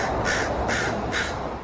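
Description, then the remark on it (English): Three harsh caws from aggressive crows in quick, evenly spaced succession, loud, with no voices over them. “Whatever it takes to keep the aggressive crows away.”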